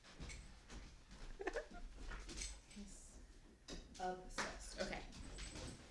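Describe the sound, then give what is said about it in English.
A dog whimpers and whines for its squeaky toy in short, high-pitched bursts, with a few soft yips and rustling movement in the background. “All right, so we'll be hearing fetching sounds”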